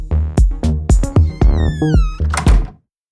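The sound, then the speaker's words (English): Muffled, bass-heavy music from a neighbor's place thumps steadily through a wall, then opens up around the midpoint into brighter, clearer music with high tones as the neighbor's door opens for a pizza delivery, before cutting off. “When your neighbor opens the door for pizza delivery, all those high frequencies can escape.”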